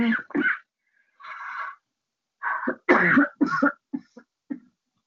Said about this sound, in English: I have a bit of a dry cough tonight. Pardon me. So I have to give myself a sip of my favorite mint tea.